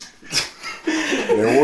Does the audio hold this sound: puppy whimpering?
yes